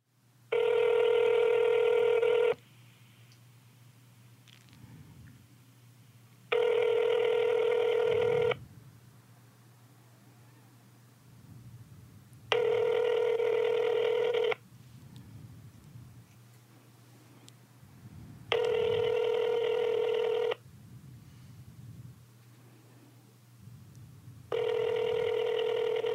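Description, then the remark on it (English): A phone's ringback tone repeats five times, each ring lasting about two seconds with roughly four-second gaps, loud and clear over a low steady hum, as a call to the caller's father waits unanswered before going to voicemail. “Hella rings, right?”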